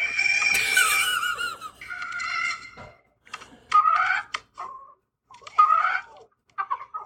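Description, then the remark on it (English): Porg sound effects: a string of small creature-like chirps and warbles: a long, busy trilling burst at the start, then several short high squawks and coos separated by brief pauses, fairly loud with no talking. “Okay, yeah, here's some porg sound effects.”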